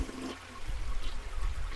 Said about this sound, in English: If you flush that toilet one more goddamn time... What? I swear to everything holy and I said, if you flush that toilet one last time, I swear to everything holy and unholy.